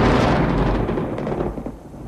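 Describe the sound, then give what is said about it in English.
A deep, sustained rumble of thunder, a sound effect mixed in with digital audio, rolls loudly at first, then slowly fades and thins out over about two seconds, with no voices present. “So let's put in some thunder for the Chief Joseph scene.”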